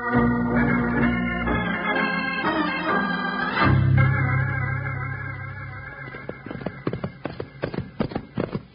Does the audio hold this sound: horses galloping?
yes